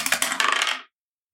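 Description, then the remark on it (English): Dice from a new, previously unused set clatter across a hard table for a first roll in a quick burst of bright clicks and rattles that tumble for under a second, then stop abruptly into silence. “All right, Elsa. First roll. Here we go.”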